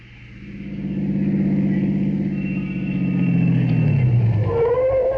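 A car engine hums steadily, then revs as the car drives off, its pitch sliding downward near the end. It sounds fairly loud, with no talking.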